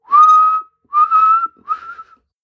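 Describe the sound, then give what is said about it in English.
Three sustained whistles in a row, each held for about half a second with short gaps between them, loud, the last one slightly softer than the first two. “So three long whistles.”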